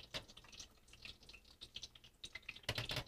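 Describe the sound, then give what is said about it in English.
French fries popping and crackling in hot oil as the last few fries are added, a steady stream of small sharp pops and sizzles with a louder burst of crackling near the end. No one speaks. “Yeah, if you can hear that pop, that's good. The slow pop.”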